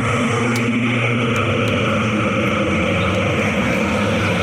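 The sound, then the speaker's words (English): An ancient cursed amulet drones: a low, ominous hum runs steadily and loudly throughout, thick with rumbling bass and layered tones, with faint clicking ticks flickering above it. “Sometimes the cursed amulet drones like that when it's not pleased with me.”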